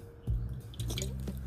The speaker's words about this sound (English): A bit of a swig there.